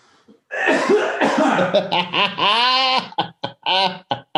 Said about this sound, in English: And answer me without clearing your throat in the microphone.